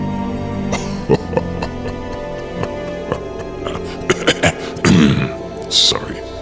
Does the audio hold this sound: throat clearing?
yes